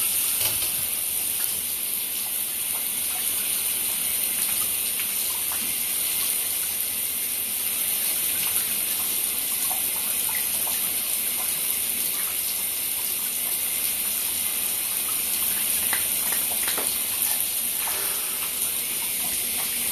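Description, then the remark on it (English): Steady rushing of shower water running continuously, a dense hiss with faint splashes and patters, fairly loud, with no voices. “you're listening to Cold Shower Talk. I'm about to hop in, so let's see what jumps out.”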